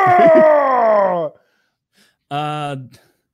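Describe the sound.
A voice imitates the straining scream of Tony Soprano lifting weights: a long, loud, harmonic yell sliding downward in pitch, then after a short pause a second, steadier strained shout that cuts off abruptly.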